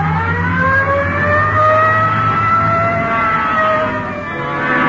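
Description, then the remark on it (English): A police siren wails steadily over the low rumble of a car engine as the patrol car pulls away, loud, responding Code 3 with lights on to a 211 shooting call at Hill and Geneva Alley, the siren's tone sliding and fading slightly toward the end. “Code 3. Hit the light. Yeah, come on. Let's roll.”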